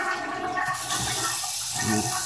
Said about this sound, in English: So if you don't hear the water running, if you don't hear the toilet being flushed, don't judge me.